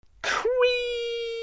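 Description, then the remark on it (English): A shed door creaks open: a short rush of scraping noise, then a long, steady, groaning creak held at one mid pitch for about a second, fairly loud with no talking. “Let's crack on and open the door to the shed.”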